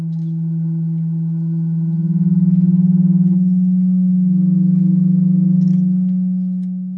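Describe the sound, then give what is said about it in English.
A fire organ, a pipe organ driven by flames and part of the artist Trimpin's latest work, sounds a single sustained low, hollow pipe tone that drones steadily for several seconds, swelling slightly and wavering midway before fading a little at the end, with no other sounds. “Trimpin's latest work, the one we're going to be focusing on today, includes something called a fire organ. That's a pipe organ driven by flames.”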